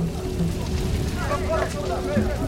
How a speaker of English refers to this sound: We arrived to find a sauna on fire.